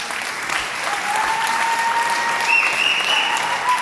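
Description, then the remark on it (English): A crowd applauds steadily, a dense wash of clapping holding at an even, fairly loud level throughout, with thin whistle-like tones cutting through near the end. “This is an adorative crowd.”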